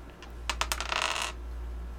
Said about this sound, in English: so you get to roll 1d3, which just means you roll... a six-sided die. 1, 2, 3 count as 1, 2, 3. 4, 5, 6 count as 1, 2, 3. Roll it. What you just said. 1, 2, 3. Take a dance. Roll a six-sided die. Oh, just a regular dice.